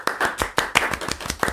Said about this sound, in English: After a few moments, the Glee team and Maeve burst into applause.